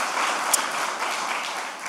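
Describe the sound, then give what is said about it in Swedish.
A crowd at a church service applauds the wind-instrument musicians steadily, many hands clapping in a dense, continuous patter that holds an even loudness for about two seconds, with no voices standing out. “Klappa om dem. Klappa om dem.”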